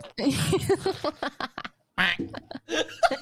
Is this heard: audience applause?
no